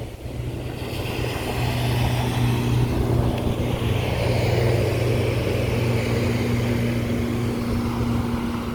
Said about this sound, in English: Here comes a boat.